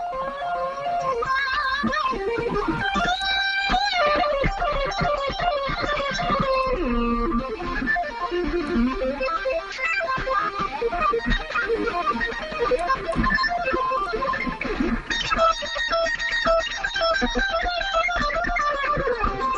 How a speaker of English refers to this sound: Yeah, I got to move away from the phone. You guys are going to hear my regular guitar and not the speaker.